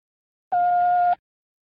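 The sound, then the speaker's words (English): A single steady electronic beep, the signal of a telephone time announcement marking the time as 11:41 and three quarters: one clean, fairly high-pitched tone lasting just over half a second, with silence before and after and no voices. “When you hear the signal, the time will be 11:41 and 3/4.”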